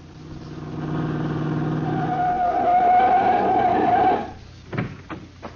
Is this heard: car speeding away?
yes